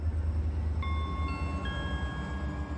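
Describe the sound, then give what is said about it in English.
A train rumbles steadily with a deep, constant low drone, and partway through a high electric whine appears and steps upward in pitch a couple of times. No one speaks. “So you get onto the platform and you get onto the train, into your seat, and you sit down.”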